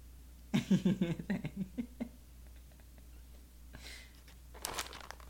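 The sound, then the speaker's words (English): Crinkly plastic packaging rustles and crackles in a quick burst of handling as a chewy cookie is taken out of its box, then two more short rustles follow after a pause. “They have to know it's a cookie coming out of the box.”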